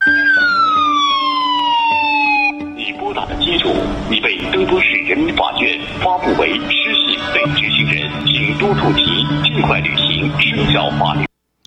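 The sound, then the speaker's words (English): A phone alert in China warning of an undesirable caller with a lower social credit score opens with loud, wailing siren-like tones sweeping downward, then gives way to a dense, steady stretch of voice and sound that runs on before cutting off abruptly. “Now, this is an undesirable caller. The caller has a lower social credit score than yours.”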